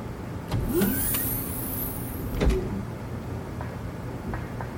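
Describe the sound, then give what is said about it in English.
A mechanical door opens during a prisoner transfer, with a pneumatic hiss and a couple of heavy clunks, the first near the start and a louder one halfway through, over a low engine-like hum. “Portal is closed, clear for door opening.”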